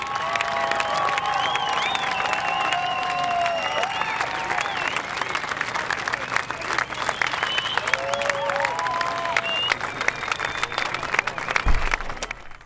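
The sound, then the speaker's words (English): A crowd of a couple hundred people claps steadily and loudly as Leo makes an entrance, with whoops, shouts and high whistles rising above the dense applause, building into a sustained cheer. “You know, say what you want about Leo, but he makes a great entrance. Crowds love him, always have.”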